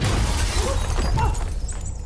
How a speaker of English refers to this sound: heavy, scarred hands break through the glass.